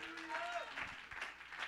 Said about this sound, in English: Somebody clap your hands and give God praise.